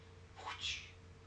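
A single short, faint meow from Pixel, a female pet cat, rising briefly out of a low background hum with no one talking.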